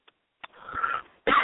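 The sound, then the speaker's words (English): A person getting over a cold coughs: a couple of short, sharp coughs, a raspy breathy stretch, then a louder, harsher cough at the end. No one speaks. “I apologize about the coughing there.”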